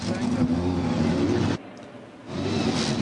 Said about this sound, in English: Here to give the command to start engines on behalf of Cooper Tires for the Indy Lights at Worldwide Technology Raceway, it's former IndyCar driver Johnny Unser. Gentlemen, start your engines!